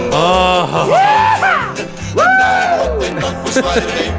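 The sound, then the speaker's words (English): Two loud, drawn-out rebel yells shouted by the hosts, each whooping upward in pitch then sliding down, with a steady low thumping beat running underneath. “When Johnny heard the bugle call, he gave a rebel yell.”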